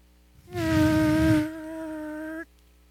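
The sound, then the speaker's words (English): A voice imitates a push-button power car window sliding down: a steady, buzzing mid-pitched hum lasting about two seconds, rougher and louder at first, then smoother and softer before cutting off abruptly. “We were that cool, man, that somebody can push a button and their window goes down.”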